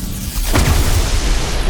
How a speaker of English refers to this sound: Flash is using his lightning to try to reverse the beam's negative electricity.